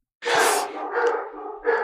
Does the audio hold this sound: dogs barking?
yes